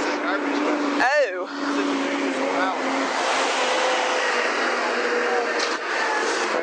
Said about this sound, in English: boy, these are some loud trucks.